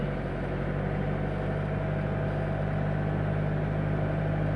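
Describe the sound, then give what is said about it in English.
A car engine, heard from inside the car with the occupants sitting basically right on top of it, drones steadily, a low, constant rumble with an even hum and no pauses or voices throughout. “And then, you know, when you go really hard, it sort of roars into life.”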